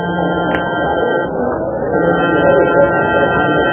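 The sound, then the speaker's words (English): A warning buzzer sounds in Nickerson's jewelry salon, droning steadily for several seconds, a flat, harmonically rich tone holding one pitch over a low murmur of background noise. “At the sound of the warning buzzer, the remaining customers began to drift out.”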